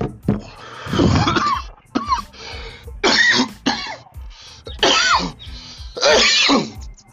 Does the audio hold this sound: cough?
yes